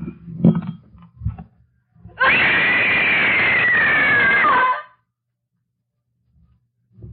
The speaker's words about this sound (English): Four years of sobriety with that scream of rage inside of me. 4 years of trying to figure out how not to act out listening to that scream.